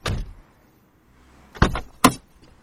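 Outside a car dealership, a car door clicks open, followed by a low mechanical whir, then a couple of solid thuds as the door is pushed shut, fairly loud with no talking.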